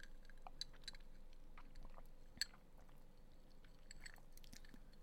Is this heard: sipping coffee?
yes